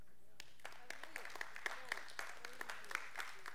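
An audience breaks into a round of hand clapping: sharp, scattered claps building into steady, moderate applause that keeps going without any voices over it.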